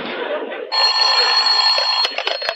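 A telephone bell rings loudly and steadily after a short burst of muffled noise, its bright metallic tone breaking up into rapid clicks and pulses near the end.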